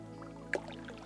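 A single soft splash of a canoe paddle dipping into the water of a slow, meandering river at sunset, brief, rising over a steady low musical hum that continues throughout.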